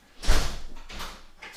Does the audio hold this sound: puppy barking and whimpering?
no